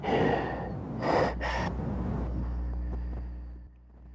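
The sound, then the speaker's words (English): A person imitates snorting, heavy breathing with three rough, breathy bursts in quick succession, followed by a steady low rumbling hum. “I'm going to try to pinpoint where that heavy breathing is coming from.”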